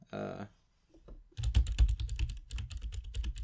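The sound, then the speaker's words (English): A short vocal hum, then a pause, followed by a busy burst of fake computer keyboard typing: quick, irregular key clicks clattering continuously for a couple of seconds. “That was fake typing.”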